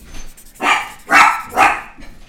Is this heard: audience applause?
no